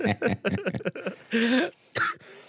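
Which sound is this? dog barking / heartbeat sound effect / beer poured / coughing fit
coughing fit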